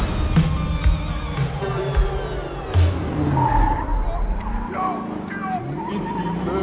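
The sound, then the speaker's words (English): Car tires skid and squeal in sustained, wavering screeches over a rumbling engine, fairly loud, with muffled voices underneath. “That's a car right there.”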